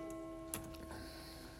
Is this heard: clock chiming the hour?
yes